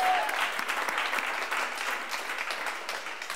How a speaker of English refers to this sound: Let's give the Jesus ladies a round of applause. Amen? Come on.